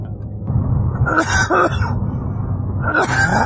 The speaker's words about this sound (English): Darn, we might have to edit those coughs out.